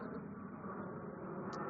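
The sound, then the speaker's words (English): A steady, broad roar of an airplane passing overhead, a continuous low-to-mid rumble that holds at an even level throughout with no voices. “Let me wait for the plane.”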